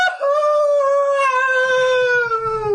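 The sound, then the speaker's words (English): A person lets out a long, loud cat-like howl, one sustained wavering yowl that slowly falls in pitch, clear, imitating a caterwauling cat. “I laid down on the floor like a cat in the cafeteria and just started howling.”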